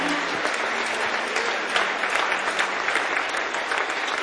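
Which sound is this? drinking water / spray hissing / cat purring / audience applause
audience applause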